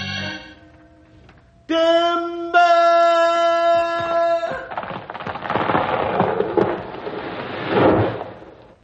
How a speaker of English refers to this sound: Look! Jumping catfish. The tree hit the ground so hard it knocked a big flame of fire out of it.